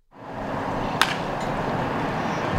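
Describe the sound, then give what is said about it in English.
A fly ball hit during batting practice in Philadelphia strikes a parked car with one sharp, ringing metallic smack, followed by a fainter echo, all over a steady wash of outdoor crowd noise. “He hit a car with one of his fly balls.”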